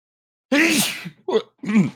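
A single loud sneeze bursts out after a moment of silence, followed by two shorter voiced sounds like a grunt or a bit of recovery afterward.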